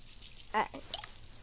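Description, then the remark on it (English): Steak sizzles in a hot pan, a steady, fairly quiet crackling hiss that runs throughout, with a couple of brief voice sounds breaking in partway through. “The steak is frying up.”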